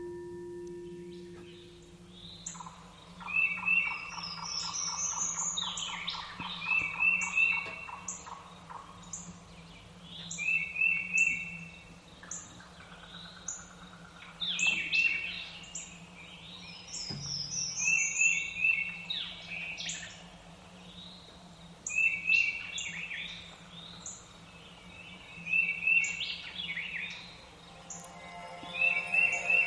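Repeated chirps and trilled bird calls ring out in short bursts over a steady low hum, forming a continuous forest birdsong ambience with several loud birds calling, played as a 3-minute forest sounds track from a meditation timer app.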